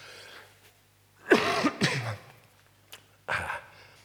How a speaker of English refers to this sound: I'm going to have another little cough here, excuse me.